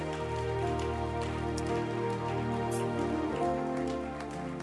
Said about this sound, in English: Oh, your hand clap is nice. Why don't you keep it going tonight?